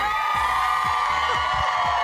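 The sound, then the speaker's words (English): A big crowd on an outdoor plaza cheers in a loud, steady roar of many voices, with occasional short whoops and shouts rising out of the din throughout. “This is a big crowd right now.”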